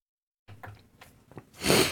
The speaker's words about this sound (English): God damn, I'm really sorry, you guys, that I'm just coughing like a maniac over here.